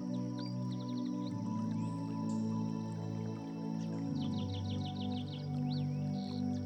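A steady wash of flowing creek water runs throughout, with small birds chirping in quick bursts and a low, sustained tonal hum underneath. No one speaks.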